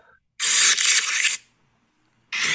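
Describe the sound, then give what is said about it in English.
A loud, harsh crackling rustle like paper being crumpled, heard at the very beginning of QT Marshall's music, lasting about a second, then a brief silence before another burst begins at the end. “It sounds like a crumpled up piece of paper.”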